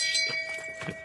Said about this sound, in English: And when we give our moments of shame, you will hear the bell of shame